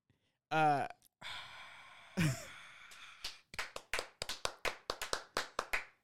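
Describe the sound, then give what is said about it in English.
A voiced sigh and a breathy exhale come first, then a short burst of sharp hand claps, about a dozen, fairly loud and slightly uneven, as the rest of a team claps their hands for an answer. “This is when the rest of the team claps their hands for my great answer.”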